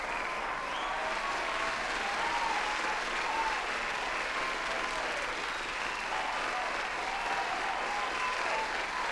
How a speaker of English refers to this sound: Before I make a move and do anything, I gotta let them hand claps go, man, because you never know. Might be the last applause, you dig?